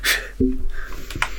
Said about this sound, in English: I'll find a way to cut around that cough.